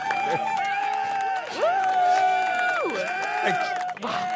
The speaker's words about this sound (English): I'm going to just give myself a round of applause.